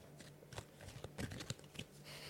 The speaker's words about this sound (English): That's the shuffling of the cards, guys. Okay, one fell out, so I mean that maybe it's meant for us.